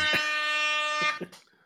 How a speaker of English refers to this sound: I'll wait for the air horn. There it is.